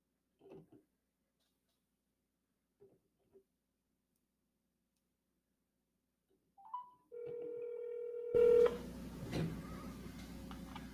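A few faint clicks, then a short rising beep and a steady electronic phone tone, cut off by a loud burst of line hiss and static as a phone call to a guest connects. No one speaks.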